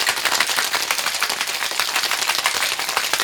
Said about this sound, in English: Put your lid on your shaker and give it a good shaky shaky.